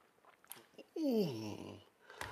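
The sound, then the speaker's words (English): Soft mouth sounds of people sipping and swallowing drinks together, followed by a loud, drawn-out satisfied "ahh" that slides downward in pitch, then a small clink at the end. “It's called the simultaneous sip, and it's going to happen right now.”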